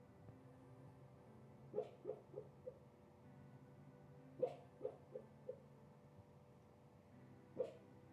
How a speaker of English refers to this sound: Did you hear that? That's Peppy. She's dreaming. She's dream barking. I love it when she does that for some reason.